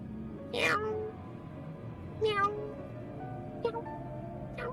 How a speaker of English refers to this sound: Meow. Meow. Meow. Meow. Meow.